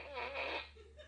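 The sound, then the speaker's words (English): A single buzzy, wobbling electronic fart noise from a toy fart gun pointed downward blurts out for about half a second, then trails off into faint background hum, with no talking. “Marsh has this new toy and it's a fart gun.”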